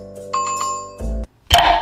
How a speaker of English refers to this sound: Hit that notification bell.